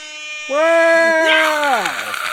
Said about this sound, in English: Do I need to get the air horn back out for this one?